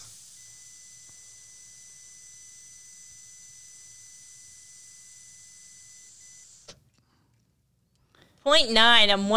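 A long, steady rush of breath as someone blows into a breathalyzer, with a faint constant tone beneath it, then a click, a brief pause, and a loud warbling electronic beep.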